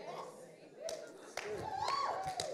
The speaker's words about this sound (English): I hear some claps.